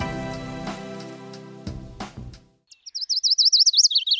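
A Bicknell's Thrush song: thin, high, wavering phrases that spiral up and down in quick succession, clear, following a short burst of tonal music that fades out.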